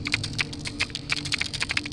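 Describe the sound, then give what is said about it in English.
Rapid, irregular sharp clicks from an underwater creature patter steadily over a low, muffled rumble, each click crisp with a faint ringing tail. “It's like something's clicking in the water. And it sounds like it's some sort of creature making this reverberating click.”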